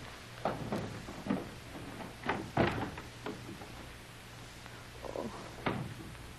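A key scrapes and clicks in a door lock, unlocking a door that was closed from the other side, with a cluster of irregular metallic rattles, a pause, then a few final clicks over a low steady hum.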